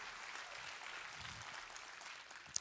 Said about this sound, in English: Can you give God a hand clap of praise as you give them some love?